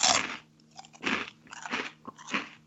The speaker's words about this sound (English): Why don't you take another little mouthful of snack just to give us some audio for people to guess what it is? Okay. Say what you hear, people. Say what you hear.